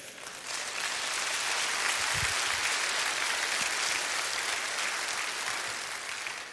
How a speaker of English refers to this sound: And I didn't want to end like that. But you applauded and took my thunder here.